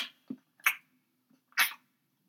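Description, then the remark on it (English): A person imitates a dog licking its armpit, making a few short, wet, smacking and slurping noises in a quick irregular series, with quiet gaps between them. “And then the dog will decide that he has to clean his armpit.”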